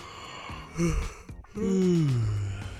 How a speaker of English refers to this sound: Ooh, and now let's take a quick moment to serenade our listeners with a yawn.